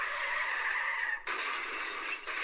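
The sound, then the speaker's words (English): Car tires skid in a car wreck, a loud, continuous screech lasting a couple of seconds, with a slight shift in tone midway and no voices present. “Car, car, car, car. Car wreck.”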